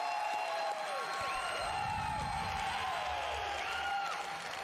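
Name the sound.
crowd yelling and cheering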